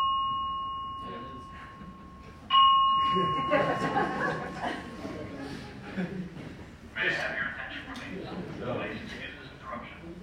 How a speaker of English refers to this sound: That was a really feeble bell. It made me want to like sharpen a pencil. It didn't make me want to leave.